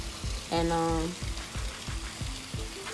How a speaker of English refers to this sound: And like, it wasn't raining this fucking hard. But it was raining pretty hard.